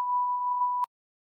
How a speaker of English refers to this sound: Say the name, or rather, say you don't remember the name, and I'll beep it.